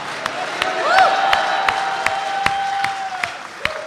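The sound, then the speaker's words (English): An audience roars hallelujah and applauds, with sharp distinct claps over a steady wash of crowd noise and long, rising vocal shouts ringing out. “Can I hear a roar of hallelujah today?”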